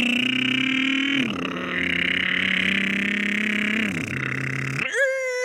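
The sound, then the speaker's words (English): A man's voice imitates a motorcycle engine, a loud buzzing, revving drone that holds steady, dips in pitch, then cuts to a sharp higher rev at the end. “And as always, we end with an adult man making motorcycle noises with his mouth.”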